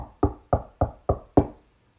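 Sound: knocking on a door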